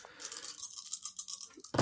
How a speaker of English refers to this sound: So that would be 2 green dice that you're rolling against it. Okay. And if it's important to you at any point, you can flip a light side point. Oh, no. Not right now. All right. So roll all those dice.